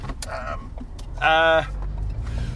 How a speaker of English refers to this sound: Yeah, but with added car sound this time. Added car sound and added sounds of us driving around places and just going, yeah, that's not very interesting.